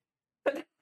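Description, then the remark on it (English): A single sharp sneeze bursts out after a stretch of silence, followed by the start of another similar burst right at the end. “Excuse me. God bless you.”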